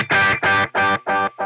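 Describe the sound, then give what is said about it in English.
A distorted electric guitar note played through a delay pedal repeats in evenly spaced echoes, about three per second, loud, with the final repeat slightly quieter as the echoes begin to fade. “Level control sets the volume of the echo. Echo, it can be louder than the original signal at maximum.”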